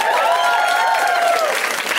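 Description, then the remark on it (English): A comedy show audience applauds the lineup of comedians waiting backstage, steady dense clapping filling the whole two seconds at an even, loud level, with a few cheering voices rising over it. “You can clap for them also.”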